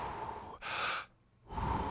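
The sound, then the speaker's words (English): Audible deep breathing: a long airy inhale followed by a forceful exhale, a brief quiet pause, then another breath starting. No talking. “I could take deep breaths.”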